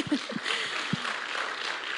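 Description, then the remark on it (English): A short burst of scattered audience applause for a decision to move forward with education, a steady hiss of many hands clapping at moderate volume, with a few faint low voices showing briefly near the start. “Now, many of you, we can applaud that, sure.”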